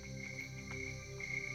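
A steady, continuous chorus of crickets chirping softly in the background, a faint high-pitched shimmer with no pauses and no voices.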